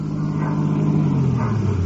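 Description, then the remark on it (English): A car engine hums steadily as the vehicle approaches, its low rumble shifting in pitch as it slows and turns around a corner, loud and continuous with no voices. “I believe that's Mrs. Herger's car now, coming around the corner.”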